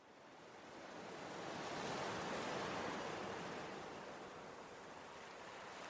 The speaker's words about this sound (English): You resist the temptation to pull the emergency lever and sail your ship and your makeshift crew out of the storm. And mostly calm ocean waters greet you again.